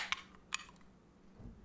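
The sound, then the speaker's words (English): A beer can cracks open: a sharp metallic click followed by a second snap with a short fizzy hiss, then quiet. No one speaks. “Well, let's get drinking. I'll crack it first.”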